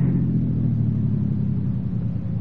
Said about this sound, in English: And then, at the beginning of the steep grade, I stopped the car.